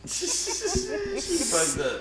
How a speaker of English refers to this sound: See how I'm sitting over here coughing this shit like I didn't smoke through it.